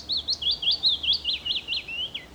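A small songbird sings a rapid, repeated series of high, slurred whistled notes, clear, with a soft background hiss and no voices.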